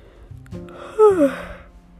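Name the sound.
yawn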